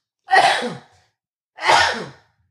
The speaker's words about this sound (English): I'm going to sneeze.